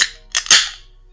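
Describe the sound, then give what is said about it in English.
A paper-labelled beer bottle cracks open: a couple of sharp, bright clicks followed by a louder pop that trails off into a short hiss, with no voices. “It's got that weird pop.”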